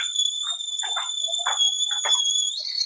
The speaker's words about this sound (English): the kettle is going off.